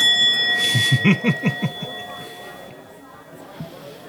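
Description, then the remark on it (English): A bell rings with a quick run of about eight rapid strikes, its high, steady tones hanging in the air and slowly fading over a few seconds of quieter background noise. “I'm going to give you a ring of the bell.”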